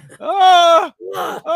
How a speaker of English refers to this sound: Did you hear him screaming back there?